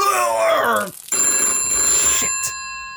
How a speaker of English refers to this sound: and I'm not answering it this time. Let it go to the answering machine.